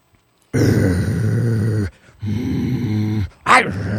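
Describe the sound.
A person growls like an animal: two long rumbling growls, the second briefly broken, ending in a short sharper snarl-like burst. No one speaks.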